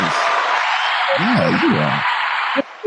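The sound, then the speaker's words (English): A steady wash of loud crowd applause, dense hand clapping with a few rising and falling cheering voices mixed in, cutting off abruptly near the end. “I got to give you applause.”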